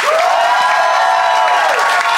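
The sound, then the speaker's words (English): A Phoenix audience applauds and cheers loudly and steadily to vote for one side of a debate, a dense wash of clapping with high-pitched whoops and shouts riding over it for the whole stretch. “But if you think Tom and Thomas made the best case and therefore Omega's in the right, applaud now.”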